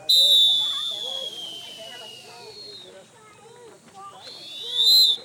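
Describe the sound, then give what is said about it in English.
Several shrill whistles blown together in unison by lifeguards at Austin city pools, signalling a rest break: two long, piercing blasts, one at the start and one at the end, with a crowd of voices chattering underneath. “All the lifeguards blowing their whistles in unison, a symphony of whistles.”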